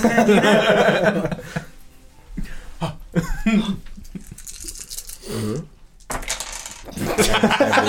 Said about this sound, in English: Very good. We got these dice tricks. Let me spike the dice on the table. Awesome. Bam!